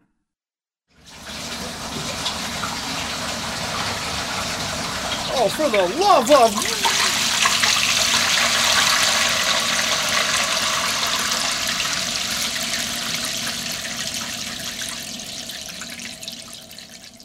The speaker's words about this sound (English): But after the fact, after our bodies had been tossed in the hallway like ragdolls by a rush of water